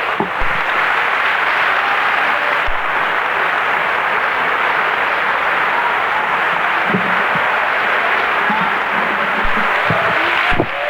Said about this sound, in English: Would you give the Lord a good hand clap? I'll get comfortable.